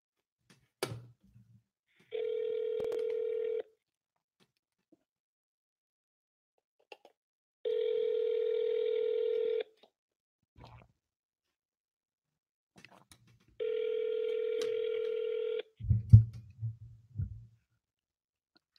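A steady telephone line tone sounds in three long, evenly spaced bursts of about a second and a half each, separated by silence, as a phone call goes unanswered, followed by a few soft clicks and a low thump at the end.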